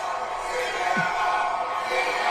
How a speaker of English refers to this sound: So again, the crowd can't hear him because they're just chanting CM Punk so loud.